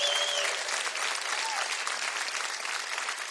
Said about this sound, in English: Where's my Army veterans at? Army, give the Army a round of applause.